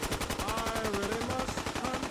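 Rapid, nonstop video game gunfire rattles in a dense, even stream of shots, loud, with faint tonal game sounds layered underneath and no talking.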